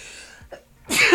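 A single sneeze: a short breathy intake followed by a sudden, loud, explosive burst at the end.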